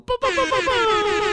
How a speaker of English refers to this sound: There's the air horn. Incredible!